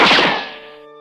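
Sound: drinking glasses clinking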